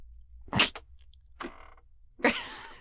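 Three short creaks from a chair in a recording studio shifting under someone's weight, spaced about a second apart, fairly loud against otherwise quiet surroundings, the last one drawn out slightly longer.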